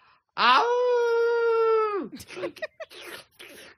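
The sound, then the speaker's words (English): A voice lets out one loud, sustained werewolf-style howl lasting over a second and dropping off at the end, imitating a wolf, followed by brief bursts of talking. “I want to moon my ass at somebody and make him howl like a damn werewolf.”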